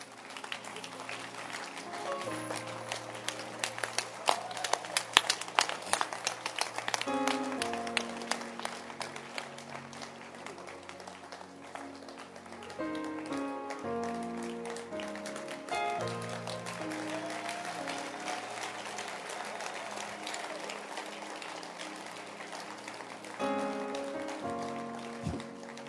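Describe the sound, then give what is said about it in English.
A church audience, standing after a sermon, claps steadily and loudly for the word of God for the whole stretch, a dense crackle of many hands, over sustained keyboard-like music chords that shift every few seconds. “Clap in your hands.”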